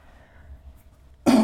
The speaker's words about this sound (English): I'm not sure if I have it the way I'm coughing now. I think the air heads is dry, right? So my throat is also dry.